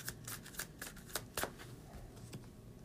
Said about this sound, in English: So let me shuffle this deck real quick.